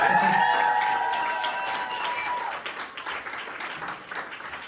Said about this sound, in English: can I just get a round of applause